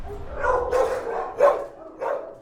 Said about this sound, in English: So this is the original dog adoption floor. This is what people think of when they think of like animal sheltering in the 90s. Within the Wake County shelter walls, only 132 kennels exist for dogs, aligning with humane care standards.